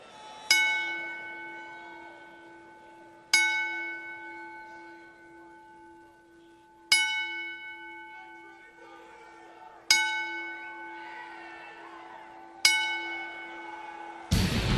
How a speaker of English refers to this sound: we ask everyone to please rise in honor of his father's memory as we toll the bell 10 times.